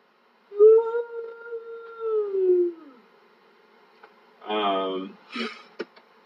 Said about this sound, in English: I'll give you a hint. Yawn with no sound. I had to make it sound for him.